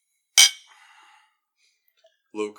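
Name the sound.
glasses clinking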